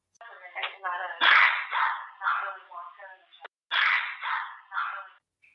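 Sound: dog barking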